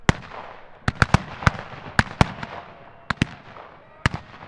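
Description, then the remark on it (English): Around a dozen sharp, loud rifle shots crack out at irregular intervals, some in quick pairs, each ending in a brief ringing tail over a low background rumble. No voices. “Most missed the sound of the first shot. It made the Yanks look around in disbelief before the following shot, and then a hail of rifle fire.”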